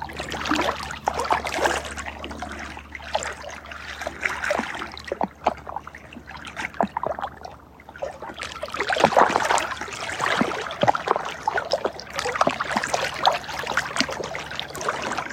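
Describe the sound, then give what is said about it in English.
Water trickles and burbles steadily over stones, a soft, continuous flow with small splashes and gurgles rising and falling, gentle, with no voices. “Feel the gentleness of the water's song.”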